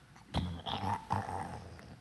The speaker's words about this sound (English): All 10 of these boys, their stomachs are growling right now.